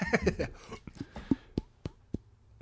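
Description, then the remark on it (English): A djembe drum struck in a handful of sharp, resonant hits spaced unevenly, following a brief burst of voice-like sound at the start; the strikes ring out loud against a quiet background. “That's a djembe drum.”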